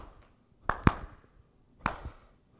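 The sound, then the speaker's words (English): Three sharp hand claps with no talking: two in quick succession, then a single clap after a pause of about a second, tapping out a simple rhythm. “All right, everybody, I want you to clap.”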